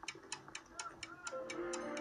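A clock ticks steadily, about four ticks a second, each tick crisp, with faint sustained tones humming quietly underneath.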